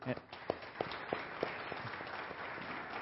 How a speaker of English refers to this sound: And just grateful for these folks that do sign for us and interpret our messages. So I'd like to give them a round of applause, something that they do.